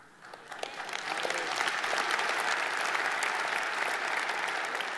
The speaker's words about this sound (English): That is worth clapping about.